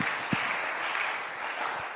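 A crowd applauds steadily for about two seconds, a dense wash of many hands clapping at an even, moderate loudness with no voices over it.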